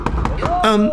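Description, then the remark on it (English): Three firm, evenly spaced knocks on a door by two men in black suits with dark glasses, loud, followed by a sustained humming, voice-like tone. “Why are there two men in black suits with dark glasses at my door?”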